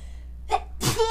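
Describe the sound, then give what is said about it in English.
A single forceful sneeze: a short sharp inhale followed by an explosive burst of breath, heard alone with no talking. “Oh my gosh, I gotta sneeze.”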